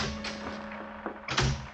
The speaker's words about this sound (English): At 10 o'clock that night, there was a rap on my cabin door.